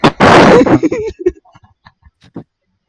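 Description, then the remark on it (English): A loud explosion erupts from a jungle, bursting out with a heavy roar that rumbles for about half a second, then breaks into scattered crackles and faint debris sounds as it dies away. “Suddenly, a large explosion erupts from the jungle.”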